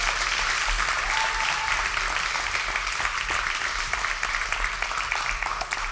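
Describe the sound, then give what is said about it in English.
Sustained applause from a large crowd thanking the worship team, a dense, steady wash of many hands clapping at once without pause for several seconds. “Yeah, you can clap. Let's say thank you one more time to our worship team.”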